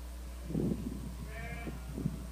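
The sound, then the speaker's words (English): Sheep bleat a few times in short, wavering cries spread across a couple of seconds, with a steady low hum running underneath and no one talking; the sheep are being called by a woman shepherd. “This is actually a woman who is calling her sheep.”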